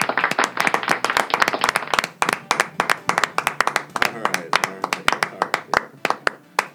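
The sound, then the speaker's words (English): A crowd applauds steadily for several seconds to welcome a guest who is about to tell jokes, many hands clapping in a dense, uneven patter, with some voices cheering faintly underneath. “So let's give a great big round of applause for...”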